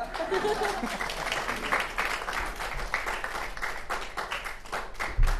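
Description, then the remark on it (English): An audience claps steadily for several seconds, a dense, continuous patter of many hands with a brief louder burst near the end and faint murmuring mixed in. “Oh, you can clap.”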